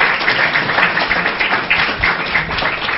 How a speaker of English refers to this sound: Thank you. Can I ask for a round of applause for the answers to that question?